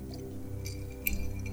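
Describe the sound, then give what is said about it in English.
A quiet sip from a glass: a soft, wet slurp with a brief sharper click about two-thirds through, over a low steady hum and no talking. “let me sip a little more of this.”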